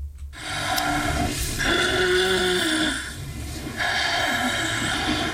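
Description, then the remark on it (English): Loud, rasping snoring: one long rattling snore, a brief pause, then a second snore starting, with no one speaking. “Obstructive sleep apnea may sound like snoring, but it can also sound like a car crash.”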